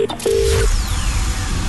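A quick burst of telephone keypad beeps as a phone call is dialed, a few short tones followed by one longer held tone, loud, with background noise and no one talking.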